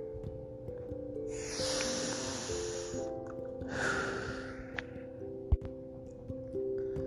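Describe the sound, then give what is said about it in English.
Two long, deep breaths, a slow airy inhale followed by a fuller exhale, over a steady low humming drone, with no one speaking. “Keep breathing.”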